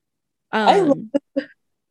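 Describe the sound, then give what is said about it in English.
A single drawn-out yawn, a voiced, moaning sound that slides downward in pitch for about half a second, then two brief, soft vocal puffs trailing after it. “Another long yawn.”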